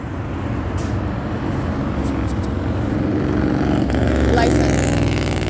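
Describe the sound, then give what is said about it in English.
A motorcycle engine rumbles past, its drone swelling louder toward the end with a rising, whining pitch as it draws closest, set against steady traffic-like background noise. “That's a demon on a motorcycle, stalking with audible activity under a fake sun.”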